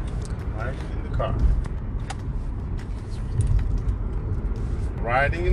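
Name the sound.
car interior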